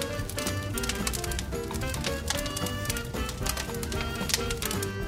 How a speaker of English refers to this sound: It's the sound of a fire crackling.